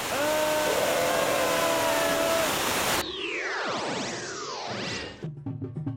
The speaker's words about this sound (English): What's that sound? A waterfall.